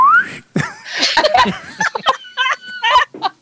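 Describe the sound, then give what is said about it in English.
A slide whistle gives a short, clear descending gliding note right at the start, then breaks off into a burst of giggling and chattering voices with a few more whistly, tonal bits mixed in. “What are those instruments called? My slide whistle.”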